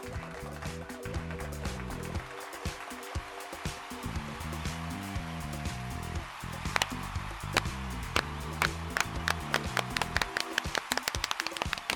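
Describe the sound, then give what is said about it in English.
Rhythmic hand claps, sharp and fairly loud, ring out over an upbeat music bed, growing denser and more insistent in the second half. “As you can tell by the clapping at the beginning of the podcast, it is the beginning of a new edition of the podcast.”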